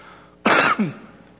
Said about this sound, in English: Okay, I was just waiting for you. I thought I'd clear my throat while I waited.